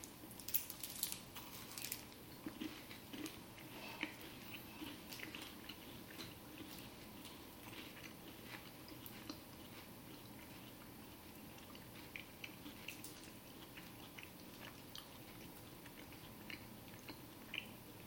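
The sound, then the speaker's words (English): Chewing of a Whatchamacallit candy bar with chocolate, peanut-flavored crisps and caramel, with repeated crisp crackles and wet munching that continue steadily throughout, no one speaking. “The protein flavor, but it has the same shape and texture and crunch,”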